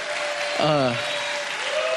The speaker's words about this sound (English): Come on, can we get a hand clap to our online audience?